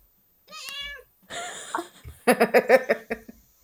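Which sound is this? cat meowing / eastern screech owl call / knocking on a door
cat meowing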